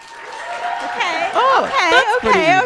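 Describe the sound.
An audience applauds as a vote for the musical Come From Away in a steady wash of clapping, with excited whoops and cheering voices rising and falling over it, growing louder toward the end.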